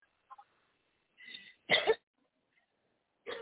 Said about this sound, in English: Take a deep breath and cough.